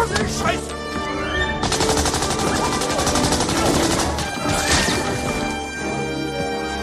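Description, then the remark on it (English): A loud, chaotic action-film fight scene in which Indy punches a guard, grabs a gun and shoots a whole bunch of guys: heavy punches and crashes followed by rapid, dense bursts of gunfire, with brief vocal shouts mixed into the din. “And as he does that, he just punches a guard, grabs a gun, and kills a whole bunch of guys.”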